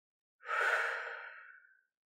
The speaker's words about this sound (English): Breathe in. Breathe out.